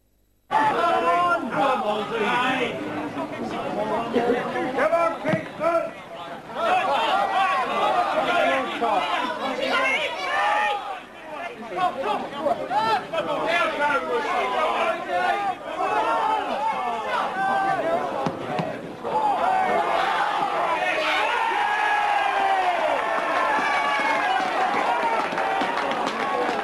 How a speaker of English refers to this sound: Here's audio of the crowd reaction after Eddie has latched onto a loose ball in the box and reached the milestone.